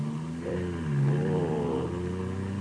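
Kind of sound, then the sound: vehicle, car engine humming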